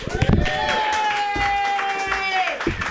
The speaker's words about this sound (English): Keep clapping your hands wildly